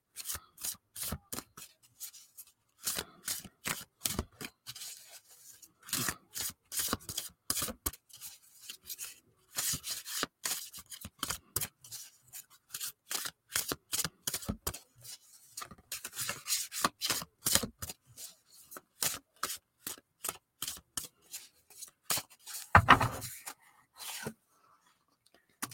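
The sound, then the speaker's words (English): A deck of music oracle cards being shuffled, with a long run of crisp, rapid flicks and soft slaps in uneven bursts, a louder thump near the end, and no voices. “So just take a moment, take a deep breath, and think about what message you need to hear as I shuffle.”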